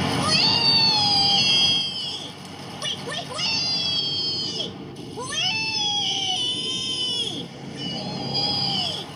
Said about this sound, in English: In fact, Biggs Pigs are so happy that they even gleefully squeal, wee, wee, wee, all the way home. Don't believe us? Well, just listen to this.